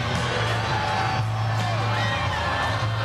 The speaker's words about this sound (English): The confetti is falling, over a million cheering and singing.